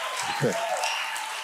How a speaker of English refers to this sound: No, I feel bad because I didn't say it in order for you to applaud.